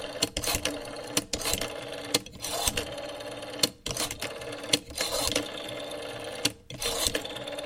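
A rotary telephone dial spun for a seven-digit number: repeated bursts of rapid mechanical clicking and whirring as the dial returns, separated by short pauses, with no voices.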